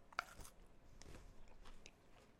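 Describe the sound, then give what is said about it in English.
A crisp bite into a grape-flavoured Kit Kat wafer bar, a sharp crunch followed by several quiet crunching chews over a couple of seconds. “I'm going to bite into it.”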